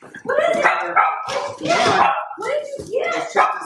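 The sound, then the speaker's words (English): A Doberman named Reagan barks and yelps excitedly, a rapid run of loud, overlapping vocal bursts with short breaks between them. “And Reagan the Doberman got some new stuff.”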